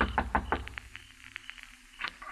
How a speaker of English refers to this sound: As I went in at the court, I saw a dim light from inside, so I knew somebody was there. I kept knocking.